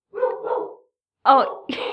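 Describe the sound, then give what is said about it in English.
A dog barks in two loud, sharp bursts with a short pause between them, following a brief stretch of voice-like sound at the start. “Oh no, the dog. The dogs have some opinions on this.”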